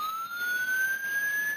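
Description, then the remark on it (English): A car alarm plays a single steady, rising siren tone, mimicking an approaching police car, loud and continuous with no speech. “The inbound police car.”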